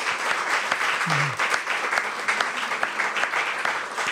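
A crowd applauds steadily, many hands clapping in a dense, even patter that holds at a fairly loud level throughout, with a brief low vocal sound partway through.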